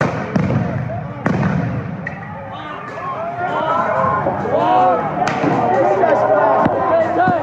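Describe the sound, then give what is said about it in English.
Portland police charge in, ripping apart barricades at an attempted autonomous zone and firing stun grenades and pepper balls: sharp, loud bangs at irregular intervals, about five in all, over a steady din of a shouting, chattering crowd. “After only a few hours, police came charging from around the corner, ripping apart barricades and firing off stun grenades and pepper balls.”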